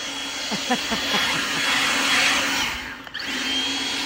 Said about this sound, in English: you'll never forget the day you became a proud owner of a leaf blower. Oh, yeah, big day in my life.